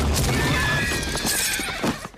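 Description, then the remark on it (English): A horse ridden by a woman galloping away whinnies loudly with a high, wavering call while hooves pound rapidly underneath, a brief, busy burst of galloping and neighing. “And she's galloping away, and then she gets hit by a spear and knocked off the horse.”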